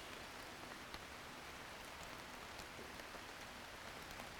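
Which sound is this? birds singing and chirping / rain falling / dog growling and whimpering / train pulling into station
rain falling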